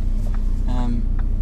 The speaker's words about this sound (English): And our convoy of six cars, one bike and one motorbike. Now we require the motorbike, so six cars and one motorbike are about to leave here